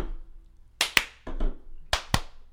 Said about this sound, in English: Clap like a man. There we go.